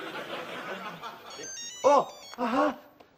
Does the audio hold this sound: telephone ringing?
yes